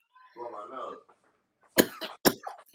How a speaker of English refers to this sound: Blow my nose.